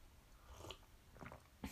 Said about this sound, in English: Speaking of which, hold on, I'm gonna take a sip of my morning tea.